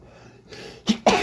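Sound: sneeze or cough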